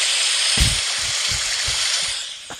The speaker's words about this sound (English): There's a, heavy rain pouring, and it's a golf course. It's fine. Extreme rain pouring.